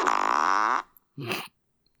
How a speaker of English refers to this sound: Nice. Pretty good one. I have to delete this now, otherwise I'm going to be listening to music. I'm going to have a fart play randomly and I'm going to fucking shit myself laughing.